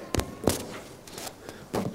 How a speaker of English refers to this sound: It's enough to make you knock your mic off. That's the closest I can do to a mic drop.